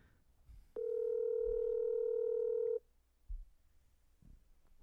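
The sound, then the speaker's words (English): A single loud, steady electronic ring tone from a phone call to a woman placed on speakerphone, lasting about two seconds before cutting off, with quiet room noise and a faint thump afterward; the call goes unanswered and is forwarded. “Are you calling her? Yes. You got to put her on speakerphone and then there you go.”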